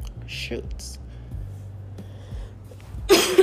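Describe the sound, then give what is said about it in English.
A person who is still recovering coughs in a loud, harsh burst near the end, after a stretch of quiet breathy sounds and faint murmuring. “So I apologize for my coughing.”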